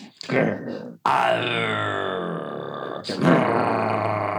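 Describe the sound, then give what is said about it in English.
A person imitates an angry spaniel's growl, a rough, throaty snarl in a few sustained bursts, fairly loud, with brief gaps between them. “It was meant to be like a spaniel, but fine.”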